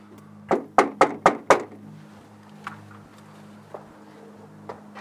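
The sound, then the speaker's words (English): Five firm knocks on the wooden front door of a house in quick, even succession, loud, followed by a few faint scattered taps against a low steady hum. “Right next to the door I was knocking on, there was another door.”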